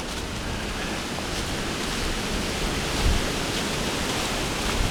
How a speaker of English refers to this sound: And so if I'm out on a day where it is a strong wind like this, it's always a good idea to try to find a spot that isn't so windy.